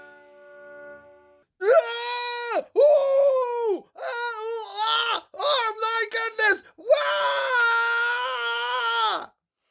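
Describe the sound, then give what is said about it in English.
A person screams in a series of loud, drawn-out, high-pitched wails, about five bursts separated by brief gaps, the last one long and sustained. “Anyway, more screaming.”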